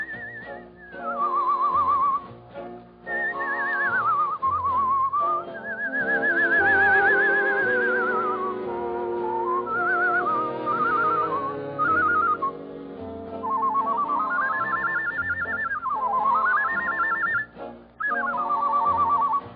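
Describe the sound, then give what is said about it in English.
A man whistles a warbling, birdlike melody full of quick trills and swoops, imitating nightingale song. It is loud, running continuously over a steady instrumental accompaniment. “The Birdman was a fellow named …, and he could out-whistle a flock of nightingales.”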